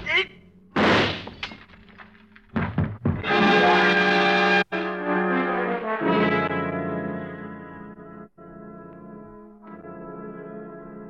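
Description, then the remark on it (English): A drinking glass falls from the hand of a man who stumbles forward and smashes into fragments on a tabletop in a sharp, loud crash, with a second burst of breakage moments later, followed by a long sustained tonal drone that slowly fades. “The glass in his hand smashing into fragments on the tabletop by your side as you step back quickly.”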